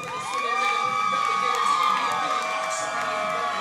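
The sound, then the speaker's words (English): A large crowd cheers wildly after Flex's emotional win, a dense, loud roar of shouting voices with high whoops and yells rising over it, sustained without a break. “The crowd is going wild.”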